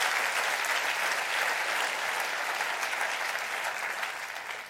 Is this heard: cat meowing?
no